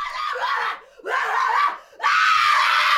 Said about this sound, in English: Although for some people, it seems it is exhilarating and cathartic to let out such a howl of anger.